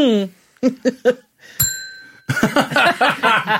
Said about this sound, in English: There's shenanigans taking place of the highest order, and I'm very unhappy that several bells have now appeared miraculously on the table from the middle of nowhere.